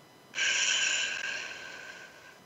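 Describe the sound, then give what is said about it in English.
A long, steady breath blown out through pursed lips during a breathing exercise, after a breath in through the nose, airy and hissing evenly for about two seconds before slowly tapering off, with no one talking. “And out through your mouth. Like through a straw.”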